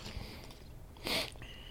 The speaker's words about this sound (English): And by the way, if you hear me sipping, that is my wonderful Black Rifle coffee that I'm drinking.